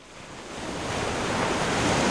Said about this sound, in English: Whoa, dude, those waves are pumping. Time for a surf.